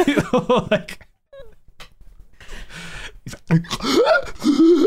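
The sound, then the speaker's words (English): A voice imitates wet, ragged gasping for air, a few strained breathy gulps with a short quiet gap between bursts, fairly loud. “I think it crosses over into a little too real for me when he's gasping for air and it's like so wet sounding.”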